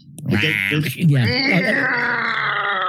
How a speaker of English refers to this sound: The cat sounds are so effective.